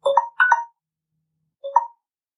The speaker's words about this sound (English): let me just hang up. Sorry, there's a phone call coming in.